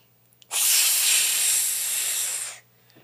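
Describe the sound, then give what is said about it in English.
A single steady hissing exhale, about two seconds long, made by a voice imitating a snake after a deep breath in, as a yoga breathing exercise. It is fairly loud, with broad airy noise, and stops abruptly into near silence. “So you breathe in, and then when you breathe out, so deep breath in, then when you breathe out, it's like a snake.”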